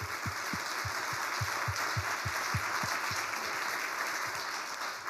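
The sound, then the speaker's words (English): Sustained audience applause, a dense wash of many hands clapping at steady loudness for several seconds, with a few louder individual claps standing out in an irregular rhythm. “I mean, yes, applause.”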